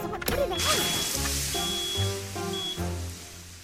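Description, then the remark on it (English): A sudden splashy crash of water thrown onto a burning tablecloth at a dinner table, followed by several sustained, steady tones that rise and fall in pitch. “This nice dinner is now wet and burnt.”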